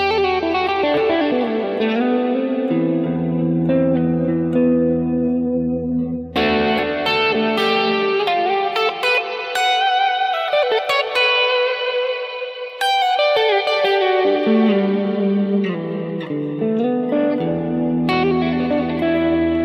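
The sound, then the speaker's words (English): An electric guitar plays sustained chords and ringing melodic lines with a light, gritty distortion and some reverb, loud with no voices. “Now, right now, all I'm doing is running a little bit of distortion.”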